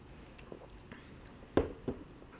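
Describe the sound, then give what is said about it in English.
A sip of double IPA beer followed by a soft swallow, two brief wet mouth sounds in an otherwise quiet moment with faint background hiss. “I'm going to take one more sip.”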